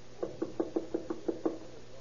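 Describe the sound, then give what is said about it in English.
A visitor knocks on a room door toward midnight: a steady series of about eight evenly spaced, fairly quick knocks, each a dull mid-pitched thud of moderate loudness, with no voices. “Before the next visitor arrives at the room.”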